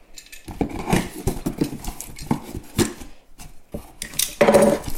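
A cardboard box from work, marked 'critical products' and holding a stool sample collection kit, being opened and unpacked: irregular scraping, tearing and papery rustling in quick bursts, with a louder crinkling flurry near the end. No one speaks.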